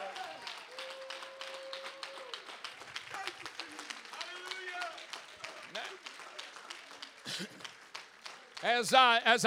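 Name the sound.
audience clapping hands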